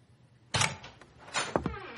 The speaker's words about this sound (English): I hear the door open and hear his footsteps on the hard wood flooring.